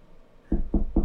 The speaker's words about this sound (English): I swear to you, that night, about 4 knocks at my door.